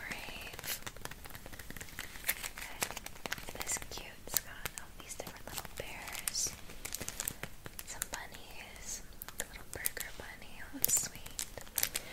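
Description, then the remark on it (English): Steady crinkling of a paper sticker sheet being given to a student to take home, a dense run of small irregular crackles and rustles lasting throughout, with soft whispering underneath. “I have this sticker sheet for you to take home with you.”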